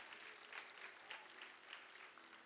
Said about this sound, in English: Clap for yourselves. You did very well this morning.